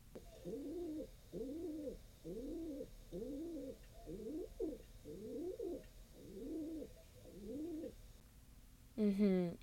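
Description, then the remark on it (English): A pigeon coos steadily, a run of about eight low, rolling coos in an even rhythm, ending with a brief louder flutter-like burst. “Here's a sneak preview of next week's episode, in which I interview a pigeon.”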